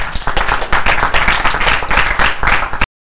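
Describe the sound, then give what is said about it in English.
An audience at a Circle of Hope Sunday meeting claps steadily for about three seconds, a dense, even patter of many hands that holds at a fairly loud level before stopping abruptly. “So let's have some more clapping.”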